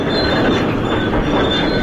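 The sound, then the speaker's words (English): A subway train rolls steadily along the rails, a loud, continuous rumble with a thin metallic whine riding above it and no voices. “I'll tell you, I never would have guessed we'd be working with subway cars, but nothing would surprise me at this point.”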